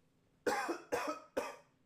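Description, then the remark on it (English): Three sharp coughs in quick succession, evenly spaced about half a second apart, each a harsh burst fading quickly, with no talking around them. “I was like, listen, I got a cough.”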